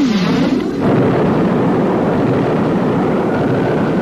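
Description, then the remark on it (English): A loud crash of thunder from a lightning strike opens with a sharp, sweeping crack and then rolls into a heavy, sustained rumble that fills the whole clip without fading. No one speaks. “And the lightning struck again!”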